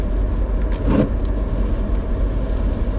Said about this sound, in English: Sorry all the rain and the wiper noise in the background.